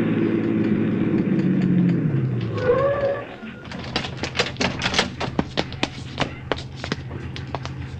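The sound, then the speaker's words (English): A police squad car's engine rumbles and winds down as it pulls up and rolls to a stop with a brief high squeal, then the motor cuts out as it parks, followed by a string of sharp clicks and taps. “Park behind that squad car pulling up.”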